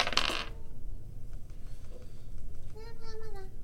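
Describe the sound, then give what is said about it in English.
A short, bright clatter of dice tumbling across a hard tabletop at the start, fairly loud, as a player rolls to hit in a tabletop game, followed by quiet room noise and a faint voice near the end. “All right, roll the hit.”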